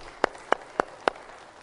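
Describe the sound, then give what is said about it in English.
An audience claps in unison: four sharp, evenly spaced claps in a steady beat, fairly soft, with no talking over them. “They don't speak English, so they think you're clapping for me.”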